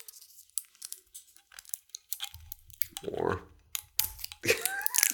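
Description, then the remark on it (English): Crinkling and tearing of clear plastic shrink wrap being pulled off a fresh spirits bottle, a run of sharp clicks and rustles that swells into a longer rip, with a brief spoken word in between. “So this is a fresh bottle. It's got clear shrink wrap. Let's pull this off.”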